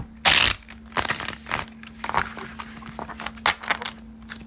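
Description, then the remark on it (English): A classic Rider-Waite-Smith tarot deck being shuffled, with a series of crisp papery riffles and slaps in uneven bursts over a faint steady hum, and no talking. “Let's give us a good shuffle.”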